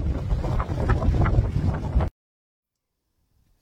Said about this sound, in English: Very windy over there. Make sure you take cover.